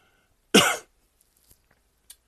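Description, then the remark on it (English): A single short cough from a man recovering from a cold bursts out sharply and loudly, followed by near silence with only a few faint small clicks and rustles. “And a little cough every once in a while, so I do apologize.”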